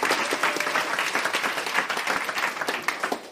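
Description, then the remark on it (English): A crowd applauds steadily, dense overlapping claps at a fairly loud level for a few seconds, with no voices standing out. “Give Nicole a round of applause”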